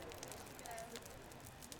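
A bonfire crackles softly and steadily, with small scattered pops over a continuous low hiss, heard at a quiet, even level throughout.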